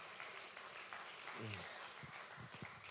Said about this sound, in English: All right. Thanks to our band. Can we give them a little round of applause?